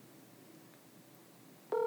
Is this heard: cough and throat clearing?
no